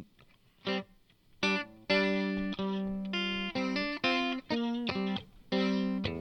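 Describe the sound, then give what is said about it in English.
A fuzz-distorted electric guitar plays a chunky riff of sustained, buzzing chords and short stabs, loud and saturated with a thick harmonic edge, with no talking. “You put fuzz on that?”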